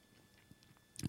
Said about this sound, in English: Sorry for chewing sunflower seeds.